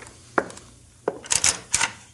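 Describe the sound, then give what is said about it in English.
A closet door is handled: two separate wooden knocks, then a quick rattling cluster of clunks and clatters as it swings open. No one speaks. “Open that closet.”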